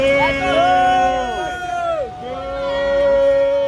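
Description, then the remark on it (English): A crowd of voices boos outside a venue at a man being taken away in an ambulance, in long, drawn-out tones that rise and fall, loud and sustained, with many people jeering together for a few seconds. “Meanwhile, dude is getting taken away in an ambulance and actually getting booed outside the venue.”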